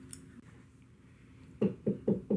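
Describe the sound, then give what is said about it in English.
Four firm, evenly spaced knocks on a door, fairly loud, ringing out in steady rhythm after a moment of quiet. “Oh, there's someone knocking at the door.”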